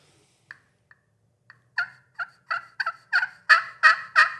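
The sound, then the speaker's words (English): A person works a glass-over-slate friction turkey call, making turkey yelps: a few soft, scattered notes, then a quickening run of about a dozen raspy yelps that grow steadily louder, with no talking. “I'm going to call it so people can hear it.”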